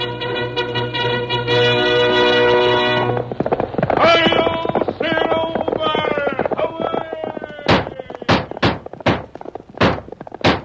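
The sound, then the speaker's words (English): In The Lone Ranger radio show, the hooves of the horse Silver pound in a fast, rhythmic patter under loud brassy music, then ring out alone as a short run of sharp, evenly spaced clops near the end. “Horse with the speed of light, a cloud of dust, and a hearty hi-yo, Silver, the Lone Ranger.”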